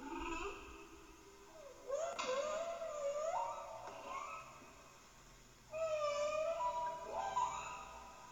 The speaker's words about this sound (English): Sounds a little bit like the T-1000. That's always my point of reference. So that's the old humpback whales. Yeah, cool, right? Very cool. Very beautiful. Very haunting.